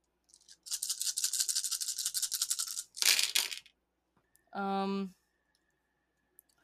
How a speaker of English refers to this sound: All right. So a total of 12 dice. Oh. Go ahead and roll them and tell me how many successes you have in sets of 10.